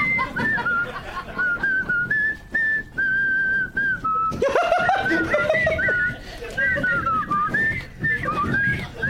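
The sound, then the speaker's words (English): People whistle a jaunty march tune together, the melody wavering and slightly off as they go, with bursts of laughter and chuckling breaking in midway. “I can't whistle without my fingers.”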